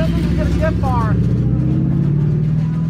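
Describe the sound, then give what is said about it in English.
A truck drives off with a bad tire, its heavy engine droning loud and steady throughout while a rhythmic rumble rolls underneath. Brief voices break in near the start. “So he drove off with the crappy tire. You hear that tire.”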